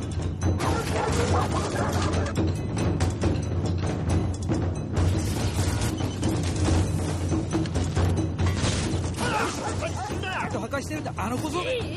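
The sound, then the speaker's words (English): A dog from Japan barks and yips excitedly over a loud, busy background of voices and commotion, with high whining yelps rising near the end. “Like, I get you have American accents, but your dog's from Japan.”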